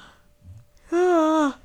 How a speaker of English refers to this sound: Stop yawning.